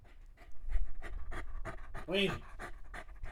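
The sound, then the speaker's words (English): A small, nervous female dog pants rapidly, quick breathy huffs repeating in a steady, hurried rhythm for the whole stretch while the dog is shaking. “Wee dog, why are you so nervous? Why are you so anxious?”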